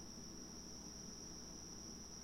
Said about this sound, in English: You hear this? Those are crickets. I'm not outside. I'm in my kitchen.